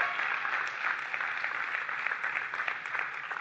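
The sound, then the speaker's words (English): Steady audience applause for a singer, a dense wash of many hands clapping at once, holding an even loudness for a few seconds without pause or speech. “You can give her a hand clap.”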